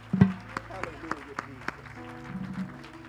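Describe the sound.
An audience claps in scattered, fairly loud bursts over a few seconds, with voices and sustained tones carrying underneath the applause, clapping their hands to God.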